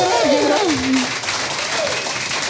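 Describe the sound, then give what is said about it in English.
The audience of the show Mugg Off applauds steadily as comedian Sam Taunton, the first guest, is welcomed to the stage, a dense, even wash of clapping that fills the whole moment, with a couple of whooping cheers rising and falling over it. “Oh, please give it a round of applause.”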